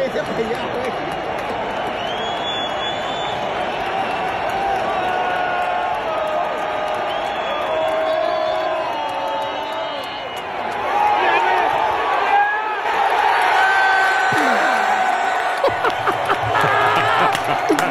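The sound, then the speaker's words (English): A large crowd at SoFi Stadium roars continuously after a touchdown pass is caught in the end zone, a dense wash of cheering and shouting that swells louder in the second half, with scattered whistles and yells rising above the din. “And listen to the crowd reaction and tell me if this sounds like a typical road game.”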